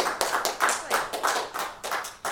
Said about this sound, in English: If you just want to give her a round of applause.